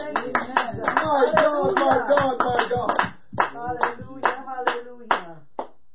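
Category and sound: crowd, audience clapping hands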